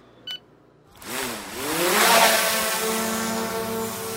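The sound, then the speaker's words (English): An inspection drone that uses aerial artificial intelligence to carry out safety inspections remotely in the oil and gas industry. Its rotors whir to life after a brief click, and the buzzy harmonic whine rises in pitch over about a second, then holds a steady, loud hum. “A drone using aerial artificial intelligence to carry out safety inspections remotely.”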